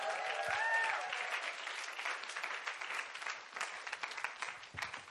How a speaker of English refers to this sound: So can we just give it up for all of the seminar speakers?